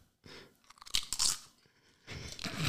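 Loud, close-up crunching as someone chews something crisp, with several sharp bites and grinding bursts, a brief pause, then another stretch of chewing.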